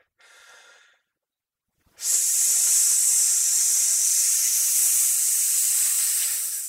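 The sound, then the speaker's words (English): A short, soft breath is followed by a pause, then a loud, forceful hissing exhale during a breathing exercise, made while clenching the butt cheeks and pulling in the abdominal muscles; it holds steady for about five seconds before easing slightly at the end. No one speaks. “So but it just hiss and clench my butt cheeks while I'm doing it.”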